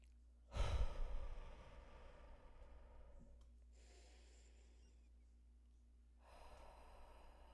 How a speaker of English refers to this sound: This past couple months has just been really focusing on my breathing. Okay, so let's do that.